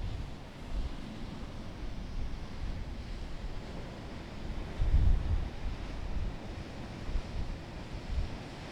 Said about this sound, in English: I will give people a few moments of serene ocean sounds. Here we go. Serene ocean sounds.